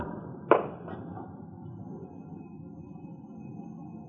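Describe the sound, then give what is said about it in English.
The front doorbell of a house rings: a sharp chime struck once, quickly followed by a softer second note, then fading into a low background hum. No one speaks. “We rang the front doorbell.”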